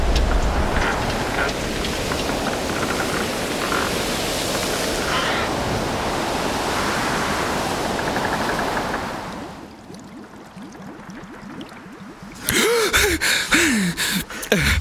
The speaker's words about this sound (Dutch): En right now, op deze avond, staat die derde dijk op springen. Rondom de Bijlmer zijn er scheuren aangetroffen. Water pusht zich door de reten.